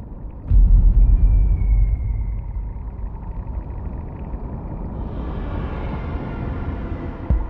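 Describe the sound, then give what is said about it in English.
A seismic air cannon, fired in search of oil, goes off underwater with a single sudden, deep thump, then a heavy low rumble lingers and slowly settles into a steady, murky wash of noise. “we intruded on their underwater civilization by firing seismic air cannons into their world, looking for oil”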